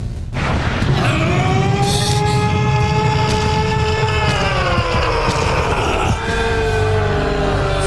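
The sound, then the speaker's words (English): A monstrous, blood-curdling scream made by Eren as a Titan: one long, loud, harmonically rich roar that bends slightly in pitch and sustains for several seconds over a rough, rumbling low undertone, with no talking. “It's blood curdling. It's this heinous noise.”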